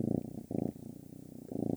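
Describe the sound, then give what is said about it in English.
A male cat purrs in a steady, rumbling rhythm, swelling louder on each breath and easing slightly between them, with no talking over it. “A kitty cat purr.”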